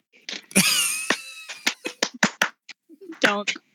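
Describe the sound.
A handful of sharp, uneven claps from a small group, a loose scattered rhythm rather than full applause, mixed with voices talking and laughing over them.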